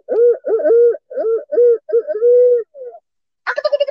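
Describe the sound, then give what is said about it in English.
A barred owl hoot made on an owl call rings out in a rhythmic series of loud hoots with a wavering, rolling quality, followed by a brief harsher burst at the end. No one speaks. “So the barred owl is a natural thing for first thing in the mornings that they might hear.”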